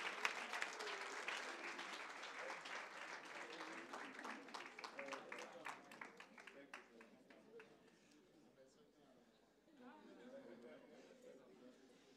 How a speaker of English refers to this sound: Let's give a round of applause for these new members of our family.